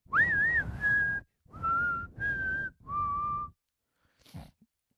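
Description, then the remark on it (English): A person whistles a short melodic phrase from a film theme: a rising-falling swoop followed by three steady held notes, each separated by brief pauses, fairly loud, with a soft breath at the end. “So whenever people see Clint Eastwood, what are they going to do? They're going to whistle.”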